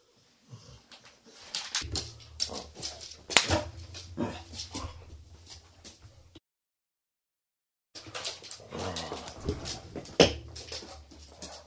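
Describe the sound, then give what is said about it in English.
A dog named Roxy growls low and whimpers, with rough, continuous vocalizing in two bursts separated by a brief pause of silence. “She's, as you can hear, Roxy's now growling at me.”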